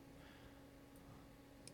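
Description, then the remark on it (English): A quick double click of a computer mouse clicking on a link comes near the end, small and crisp, after a faint earlier tick, all over a quiet, steady electrical hum with no one speaking. “I'm clicking on it.”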